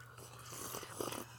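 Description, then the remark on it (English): Soft slurping of hot buttered rum, a brief wet sipping noise with a slight hiss over about a second, heard alone with no talking. “Give him the slurps.”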